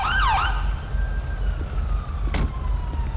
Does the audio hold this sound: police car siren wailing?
yes